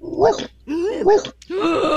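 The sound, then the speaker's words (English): A person imitates a smaller dog's bark by breathing in, making quick inhaled, squeaky yelps, three short strained barks in a row, fairly loud, with no talking. “First thing you want to be able to do is to kind of make a singing noise. But you want to do that backwards by breathing in. And you're going to do it really quickly, at the same time trying to make a barking sound.”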